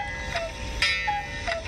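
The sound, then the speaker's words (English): An alarm clock goes off with a few short, repeated electronic chirps at a steady pace, moderately loud over a faint background hum, with no one talking. “But my alarm clock went off there.”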